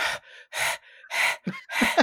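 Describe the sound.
A person imitates heavy panting, a quick run of loud, breathy huffs in an uneven rhythm, with no other sounds around it.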